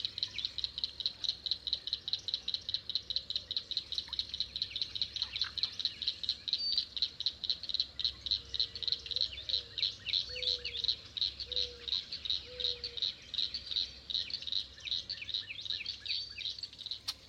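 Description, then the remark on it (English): A small group of northern cricket frogs calling at the end of a pool in a wetland, in rapid, bright, cricket-like clicking gek notes that repeat steadily and continuously throughout, with faint softer calls and a low background hum beneath. “At the end of one pool, I home in on a small group of northern cricket frogs. Their bright, cricket-like calls, gek, gek, gek, gek, enlivening the wetland soundscape.”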